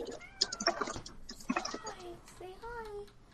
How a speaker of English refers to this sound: The cat does not want to be on the podcast.